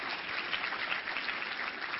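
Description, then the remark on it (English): An audience claps for the Lord in a steady, dense wash of applause that holds at an even level for the full two seconds, with no voices standing out. “Go ahead and give the Lord a little clap for that.”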